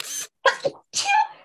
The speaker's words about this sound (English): Yes, people, that's really how I sneeze. I can't help it. Tinkerbell. It's a Tinkerbell sneeze.